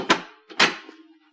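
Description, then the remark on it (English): A soft-close kitchen drawer with heavy hardware is let go and shuts by itself: two muffled clunks about half a second apart, the second preceded by a brief sliding sound and trailing off into a faint ring. No voices. “It's like the drawers that close by themselves now.”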